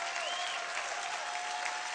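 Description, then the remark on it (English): A church audience in Louisiana claps and shouts hard and continuously for two seconds, a dense, even wash of applause with a faint held tone running underneath and scattered crowd voices mixed in. “Clap your hands and shout like you're catching this thing.”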